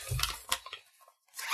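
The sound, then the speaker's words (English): A pencil case being folded: a few quick crinkly, rustling bursts of fabric or plastic, a short pause, then a final scrape of handling. No voices. “That's the pencil case folding.”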